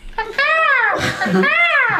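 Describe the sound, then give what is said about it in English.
A voice imitates a bird call: two loud, high warbling phrases that arc up and down in pitch, separated by a short breathy rush, with no other sounds around them. “Make a noise like a bird.”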